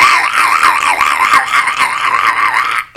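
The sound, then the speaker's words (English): A voice imitates a grindcore scream: one loud, raspy, strained shriek held for about three seconds, wavering in pitch throughout before cutting off abruptly. “No, usually a grindcore is like...”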